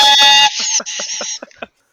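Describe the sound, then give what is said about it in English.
A cheap, loud, harsh air horn blast holds steady for half a second, then sputters into a string of choppy, stuttering bursts before cutting out, with no voices. “Shitty air horn.”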